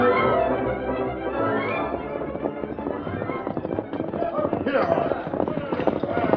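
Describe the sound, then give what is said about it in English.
Horses' hooves clip-clop in a steady, quick rhythm as a horse-drawn wagon rolls along, fairly loud, with a constant rumbling rattle and some indistinct voices mixed underneath. “Well, don't take it out on the horses.”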